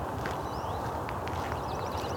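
An American goldfinch calls after sunrise in a series of quick, high, sweet twittering notes, heard over steady footsteps and low outdoor rumble.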